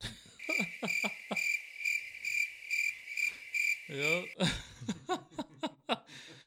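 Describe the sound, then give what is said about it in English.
A crickets sound effect: a steady, high-pitched chorus of crickets chirping for about four seconds, with a man's voice talking over it before the chirping stops and the conversation continues. “I extended that I extended the hand to him today again, and crickets.”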